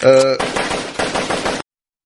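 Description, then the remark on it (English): A brief tonal blare gives way to loud elephant gun fire, a rapid string of heavy, booming shots that lasts over a second before cutting off abruptly into silence. “Yeah, nice elephant gun. I knew you had one sitting around somewhere.”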